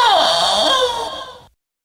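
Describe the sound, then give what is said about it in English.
A goat honks once: a loud, nasal, wavering bleat that dips in pitch at the start, holds for about a second and a half, then cuts off into silence. “Seven goats honk.”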